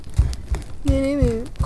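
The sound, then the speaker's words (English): A single wavering bleat from a goat named Amalthea, mid-pitched and drawn out for about half a second, rises over a steady rhythm of dull thumping steps. “Someone either shut that goat up or put it on a spit!”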